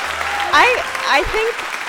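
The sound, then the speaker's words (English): A crowd claps steadily in a dense, crackling wash of applause at a live show at Hebrew College in Newton, just outside Boston, with a couple of rising voiced whoops and cheers riding over it. “I think I got more applause than both of you guys, just saying.”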